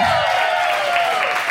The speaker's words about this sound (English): So, hey, everyone, give a big round of applause for your amazing cast as they come on stage.